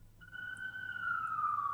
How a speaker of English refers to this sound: I'm sorry, the sirens are actually drowning you out.